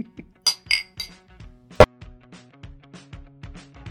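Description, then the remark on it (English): Glasses clink together in a toast: a flurry of bright, ringing taps, one especially sharp and loud, followed by softer chimes that trail off, with no talking. “And as always, cheers. Cheers. Cheers.”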